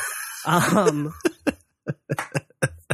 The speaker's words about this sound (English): But your coughing reminded me of death.